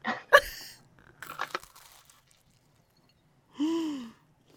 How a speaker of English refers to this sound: Yes, we need to hear that crunch, and then I'll, cheers, take a, we'll take a bite at the same time.